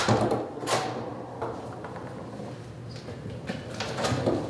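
A locked door to the closed memory care unit of Prairie View, a rural nursing home in western Iowa, is unlocked and pushed open, a few sharp metallic clunks and scrapes spread over several seconds against a quiet hallway hum, with no one talking.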